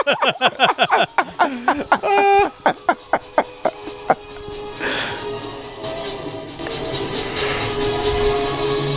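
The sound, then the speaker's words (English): A train chugs along with rapid, rhythmic bursts and a brief whistle-like tone, then settles into a steady, loud rumbling roar as it rolls on the rails. “We need to get this train to 88 miles an hour.”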